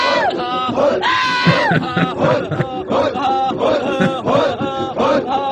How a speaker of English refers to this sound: We got the what the fuck was that? In case those that can't see, it's like Arabs screaming in a circle with AK-47s. A screaming jerk.